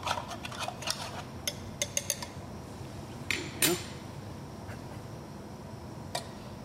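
Cold water being added to ground coffee and stirred to break up clumps, with a spoon giving irregular light clicks and taps against the container over a low, steady background hiss.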